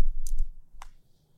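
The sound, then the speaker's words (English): Long fingernails tap together in a few crisp clicks: a quick pair near the start, then one sharper click after a short pause, with no talking. “Because like, you clicking your nails. You happy your nails done. I just keep clicking them shits.”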